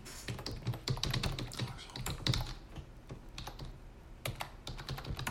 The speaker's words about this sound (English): I'm just typing this in.